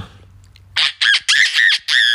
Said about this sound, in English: Oh, you know how kookaburras laugh, hey?